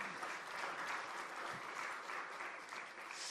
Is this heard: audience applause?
yes